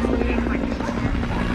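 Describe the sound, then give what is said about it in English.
A loud helicopter panning across the stereo field, with steady thudding rotor blades and a droning engine hum filling the whole stretch, and faint voices buried underneath. “panning helicopters Michael, through my headphones”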